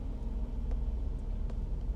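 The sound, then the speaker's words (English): Steady low rumble of road traffic heard from inside a car that is waiting for a lull in the traffic to pull in, with a muffled engine drone and a couple of faint clicks, no voices. “Do a little lull in the traffic so I can get into this.”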